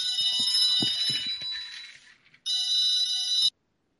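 A telephone rings with a bright, rapid metallic trill in two bursts: a longer one with a few low thumps beneath it, a brief pause, then a shorter burst that stops abruptly.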